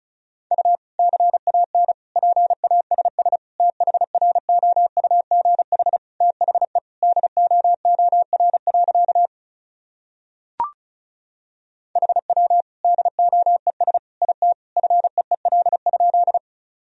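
Rapid Morse code at about 35 words per minute, sending sentences built from common words and abbreviations: a steady mid-pitched tone keyed in quick dots and dashes, broken by one sharp click and a short pause before the sending resumes.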